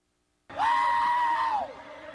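A loud, sustained high-pitched scream starts abruptly, holds steady for over a second, then drops off, leaving a low murmur of background noise, as people recreate two others screaming at each other.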